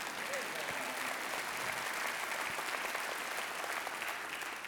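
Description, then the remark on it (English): An audience claps steadily for several seconds, a dense, even wash of many hands with no pauses or talking over it. “I'd love for you to clap at that.”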